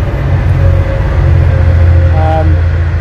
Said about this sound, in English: There's the train.